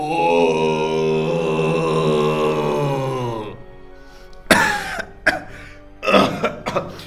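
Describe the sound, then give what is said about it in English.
A long, drawn-out vocal groan gives way to a rough burst of throat clearing and several harsh coughs, spaced irregularly over the last few seconds. “Sorry, I've got a bit of a cough.”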